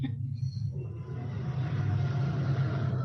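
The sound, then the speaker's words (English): A freight train with a very light load rolls past very fast, with a heavy, steady low rumble and a broad grinding wash of noise that builds slightly louder over a few seconds. “That one sounds different. What's that one carrying?”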